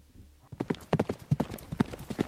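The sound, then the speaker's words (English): Galloping horse hooves, played as a stereo speaker separation test, pound out a quick, uneven rhythm, starting after a brief quiet moment and continuing steadily with no voices. “You will hear a horse galloping from the left and then gradually pass you and finish on the right.”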